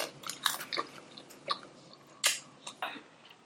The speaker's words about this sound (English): No, it's someone eating something. Cereal? These are all eating. That particular one was popcorn.